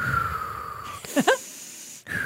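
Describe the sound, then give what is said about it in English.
A raspy wheezing inhale with whistling, strained tones lasting under a second, set against a steady background hum with no talking. “Also, listen, that's breathing in, by the way. It's just a horror in there.”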